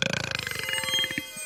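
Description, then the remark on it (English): A long, rattling burp with a rapid buzzy pulse that slows and fades toward the end, heard alone. “Every time I burp, a new galaxy is born.”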